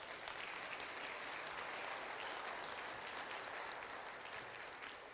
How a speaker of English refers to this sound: Will you clap for him right now? Give him a hand.